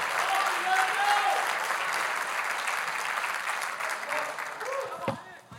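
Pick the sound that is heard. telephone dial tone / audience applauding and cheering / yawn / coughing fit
audience applauding and cheering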